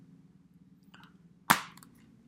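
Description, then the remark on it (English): A single sharp plastic snap of the Arrow Video Blu-ray case of Creepshow 2 clicking open, crisp, with a faint click just before it and a couple of soft ticks after, over a low steady hum. “Let me show you the inside of the box.”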